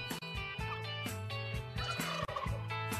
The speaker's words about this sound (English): Sorry, the turkeys were communicating to me in their native language.